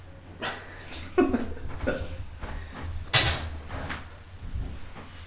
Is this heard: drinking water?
no